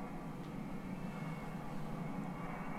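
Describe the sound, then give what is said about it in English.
A spaceship descending upon a pyramid in a movie clip gives a loud, steady engine roar: a deep continuous rumble layered with broad hissing noise, unchanging for about three seconds, with no voices. “As the ship descends upon the pyramid.”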